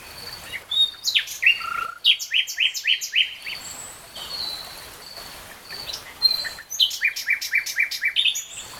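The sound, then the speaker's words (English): Clear, bright birdsong with rapid repeated trills and whistled phrases, coming in several bursts from a bird over a faint background hiss, with no talking. “And so every single work from 1952 onwards has birdsong in it somewhere or other.”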